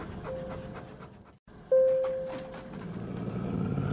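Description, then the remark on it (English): A puma growls and breathes heavily in low, rumbling bursts inside an elevator, while a clear bell-like chime rings out partway through. “That we're in an elevator with a puma?”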